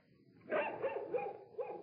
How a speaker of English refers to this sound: It's not wolves, Abel. But the dog is excited.